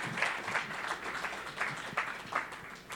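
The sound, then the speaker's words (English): A crowd applauds the children steadily, with dense overlapping claps forming a continuous crackling wash at moderate volume for the whole stretch, no voices breaking through. “Give you a round of applause for our kids.”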